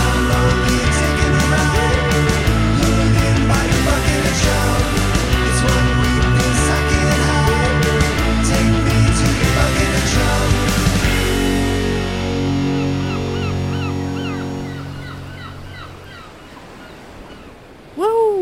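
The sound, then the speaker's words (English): A loud, full-band theme song with a steady driving beat and dense instrumentation, winding down after about twelve seconds into sustained ringing tones that fade out. “What you just heard was the brand new theme song for Bucket of Chum.”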